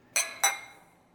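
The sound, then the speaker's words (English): Two bright clinks of beer glasses in a toast, the second following about a quarter second after the first, each ringing briefly before fading. Clear, with no voices. “Toast. Cheers.”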